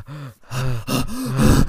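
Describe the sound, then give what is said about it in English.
A voice mimics heavy, rhythmic breathing in a TV series theme tune, a run of four breathy gasps with a rising-falling vocal tone, growing louder toward the end and performed alone. “I hate the breathing so much.”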